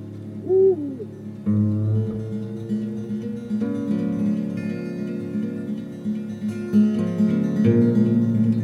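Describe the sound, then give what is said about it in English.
A single owl hoot rises and falls near the start, outdoors while camping, then fades under a low, sustained musical drone with slow chord shifts that carries through to the end. No one speaks. “When you're out camping, like, there's just always like twig snaps and like owls hooting or whatever outside, and it takes a while to get used to.”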